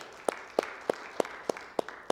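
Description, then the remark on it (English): An audience in a worship service claps hands together as a hand clap of praise, in a steady, even rhythm: about seven sharp, unified claps roughly a third of a second apart, with no voices over them. “Let's give him one more hand clap of praise, if you wouldn't mind, together with me, please.”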